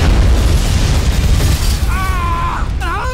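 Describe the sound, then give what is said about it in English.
A loud, rumbling explosion in an action film roars throughout, going off behind the characters, with deep booming low end and crackling debris noise, while a couple of shrill, wavering cries rise over it near the end. “Without flinching when it explodes behind them.”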